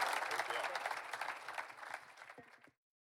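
An audience applauds in a dense, steady wash of clapping that thins toward the end, with a few last scattered claps before it stops abruptly.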